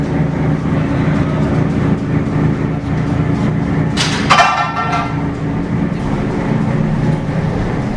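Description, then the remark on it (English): A lifeboat with its engines running and 7 crew on board rumbles steadily down a slipway as the head launcher lets her go, setting out on a 3-hour navigational exercise: a heavy grinding roar that holds throughout, with a brief high metallic screech rising sharply midway before the rumble carries on. “Head launcher will then let her go, and she's on her way.”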